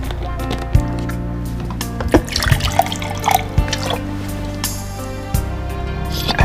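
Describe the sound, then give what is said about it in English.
Rainwater collected from a roof is poured and splashes, with scattered drips and small clinks breaking through a steady low hum in the background. “It tastes like real water. It is real water, dummy.”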